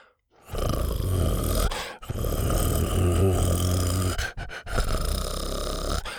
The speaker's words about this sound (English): who was staring up at him intently, a soft growl escaping his clenched jaw.